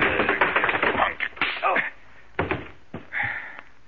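A flurry of scuffling and thudding blows, then a few sharp, separate punches with short gaps between them, mixed with grunting and a groan, as a man is knocked out.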